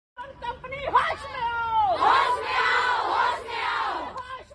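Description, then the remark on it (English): A crowd of protesters shouts slogans against a company, demanding that its founder, Abhiraj Pehel, come out and talk to them. A single raised voice is joined by many others in a loud, sustained, chanting roar that rises and falls for several seconds. “About 300 meters away, I could really see a couple of police vans parked in their hundreds, just shouting slogans against the company, demanding that the company's founder, Abhiraj Pehel, come out and talk to them and just find some common grounds”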